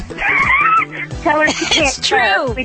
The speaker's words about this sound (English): It is so uncommon for dogs to swear, much less cuss like this one's doing.